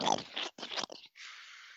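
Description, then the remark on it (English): Crunchy chewing and biting: a few quick bursts of crackling bites, then a steady rasping grind. A brief voiced sound comes at the start. “Sir, you're continuing to chew into me.”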